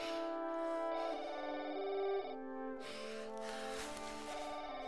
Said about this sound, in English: That's your phone.